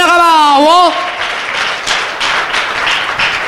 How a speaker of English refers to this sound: Come on, clap for the Lamb of God.